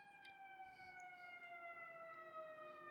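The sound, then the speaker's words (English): A Seattle Fire engine siren sounds continuously outside, a loud, steady multi-tone wail whose pitch gradually drops as it goes by, with no one speaking. “Seattle Fire.”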